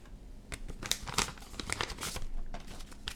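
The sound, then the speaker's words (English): Loud paper ripping and crinkling as a thick envelope that would not open is torn open by hand, with a series of sharp tearing bursts and rustles over about three seconds, no voices. “I can't get this one. I'm gonna rip it like that.”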